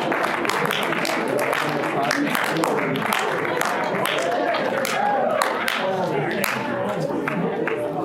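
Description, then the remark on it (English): An audience breaks into steady, sustained applause after the speaker offers a book as a gift, many hands clapping at an even loudness for about eight seconds, with a murmur of voices and a few cheers mixed underneath. “I don't get applause very often.”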